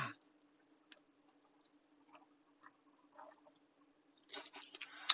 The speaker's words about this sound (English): Hold on, let me take a sip of water.